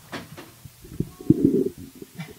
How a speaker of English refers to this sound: Go away. Close the door.